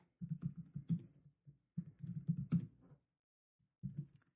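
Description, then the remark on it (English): Quick clattering keystrokes on a computer keyboard come in three bursts separated by short pauses, fairly soft, with no voices. “Should I be typing?”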